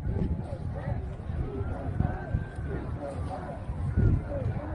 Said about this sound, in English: So the crowd's starting to come, as you can tell. You hear them in the background, right? There's not a lot of audio to this except for it's a recording and a video. I play it because you can hear the crowd off in the distance.